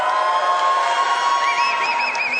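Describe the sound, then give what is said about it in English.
A crowd in a room cheers for the Chiefs in a steady wash of noise, with several high whoops rising and falling over it toward the end. No one speaks. “If you are going for the Chiefs, make some noise.”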